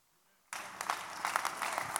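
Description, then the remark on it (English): A church audience bursts into clapping during a sermon after a brief silence, a dense, steady wash of many hands with crowd voices mixed in, loud, continuing to the end. “You're clapping and singing the house one.”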